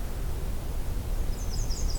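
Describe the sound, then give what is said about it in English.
A black-and-white warbler sings a thin, very high series of quick two-note phrases, repeated rhythmically in the second half, over a steady wash of low rumble and hiss. “There's our black and white warbler.”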